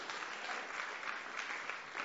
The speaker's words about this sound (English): So let's just welcome him, give him a big round of applause.